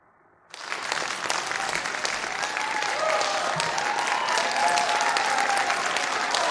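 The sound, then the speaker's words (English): Sustained applause for Marie Yovanovitch bursts in after a brief moment of quiet and keeps going steadily, a dense wash of clapping from many hands with a faint murmur of voices underneath. “And rousing applause for Marie Yovanovitch and her performance.”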